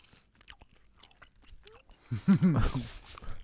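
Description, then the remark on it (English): Wet chewing of sour gum by a couple of men, with soft irregular smacks and clicks, swelling into a louder, breathy burst of mouth noise near the end. “So all here our we are, chewing gum.”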